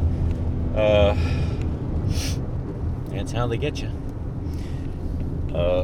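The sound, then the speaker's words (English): A small car engine, less than a fourth the size of the driver's previous 2.7 engine, drones steadily throughout, a low continuous rumble inside the moving vehicle, while a man talks over it in short phrases. “So this engine is less than a fourth the size of the last motor I drove, but it only gets half as good a gas mileage, which makes no sense.”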